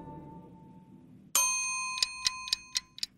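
A sharp bell-like ding rings out and lingers, followed by a quick series of five bright metallic ticks in a steady rhythm, like a timer being set to 1,000 seconds and starting to count.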